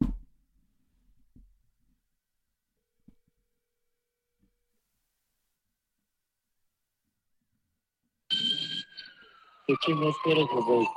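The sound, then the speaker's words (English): An ambulance siren in Nashville, heard over a phone call, wails in after a long near-silent stretch, its tone sliding downward, loud, while voices begin talking over it in the final seconds. “Hey, it sounds like there's like an ambulance there.”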